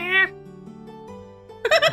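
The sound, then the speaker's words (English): A person imitates a cat sitting on a table meowing, with a short, bright meow at the start and a second, livelier one at the end, separated by a low murmur of voices. Fairly loud. “There's a cat sitting on the table as you sit down.”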